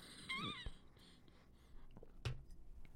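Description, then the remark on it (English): A short, high, wavering cat meow rises and falls once near the start, followed by a few soft knocks and rustles. “What was that? A cat?”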